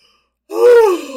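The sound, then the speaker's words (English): A single big, voiced yawn, its pitch rising and then sagging as it stretches out after a moment of silence. No talking. “I got a big yawn.”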